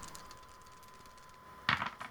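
After a quiet stretch, three dice are rolled in a tabletop game, a short burst of clattering and rattling, a few quick hard clicks bunched together before settling, with no one talking.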